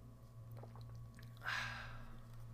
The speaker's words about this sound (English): So grab your favorite sports drink. I prefer water with a pinch of Himalayan sea salt. And won't you join me now for the simultaneous sip?